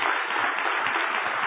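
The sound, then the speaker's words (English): A crowd at a church service claps steadily in a dense, even round of applause for military service members, holding at a constant level, with no voices over it. “So just wanted to say thank you, recognize you guys, maybe do a round of applause.”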